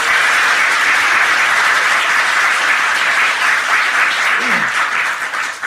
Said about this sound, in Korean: 네, 의미있는 말씀 주신 이재명 당 대표님께 더 힘내시라고 다시 한번 큰 박수 부탁드리겠습니다.